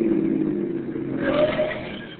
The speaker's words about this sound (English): Listen, here comes another car. Flag them, will you? Ah, you don't have to flag them. They're stopping.